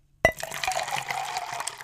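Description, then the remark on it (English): A drink being poured: after a brief silence, liquid splashes in abruptly and keeps streaming with a steady, bubbly gurgle at a fairly even volume. No one speaks. “Y'all go ahead and drink.”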